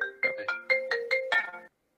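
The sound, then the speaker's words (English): A phone ringtone of an incoming call plays a quick, bright melodic run of about six rising and falling tones, fairly loud, stopping abruptly after under two seconds when the call is declined, with no voices. “Really? Who's All right, I clicked decline.”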